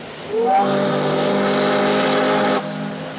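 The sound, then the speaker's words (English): A sternwheeler riverboat steam whistle on the Mississippi River sounds one long, loud blast that swoops up in pitch at the start, holds a breathy, hissing tone for about two seconds, then cuts off, leaving a low rumble. “From sternwheelers like this one to today's ocean-going vessels, commerce on the river made New Orleans one of the country's busiest ports.”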